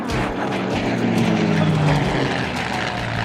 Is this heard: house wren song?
no